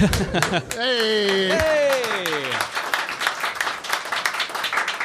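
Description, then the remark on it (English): An audience applauds with steady, dense clapping throughout, while early on a loud voice lets out a drawn-out whoop that slides downward in pitch before fading into the claps. “That was like a whore's applause.”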